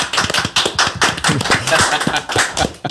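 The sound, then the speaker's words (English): A round of applause to congratulate an engagement: several people clapping in a dense, steady patter of sharp claps for about three seconds, fairly loud, with some voices faintly mixed in. “A round of applause for the engagement.”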